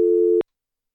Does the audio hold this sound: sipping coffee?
no